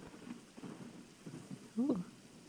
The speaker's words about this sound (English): Ooh. And it is raining. Oh, I love rain. I always feel like I write a little bit better when it's raining outside, and I have no idea why.